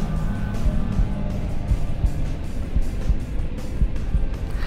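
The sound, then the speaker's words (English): A loud engine revs and roars continuously, a deep rumbling drone with rough surges throughout and no voices. “With the Stone of Chaos powering my engine, I am unstoppable.”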